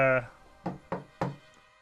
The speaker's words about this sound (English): knock at the door of the bathhouse with a code word that you would have set up with your followers while they were securing the place.